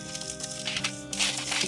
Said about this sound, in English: Oops. I'm rolling up our parchment paper.